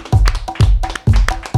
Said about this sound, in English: Clap for yourself.